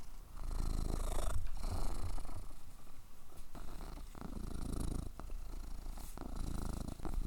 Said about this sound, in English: All right, Mom. I think we need a purr break for a second.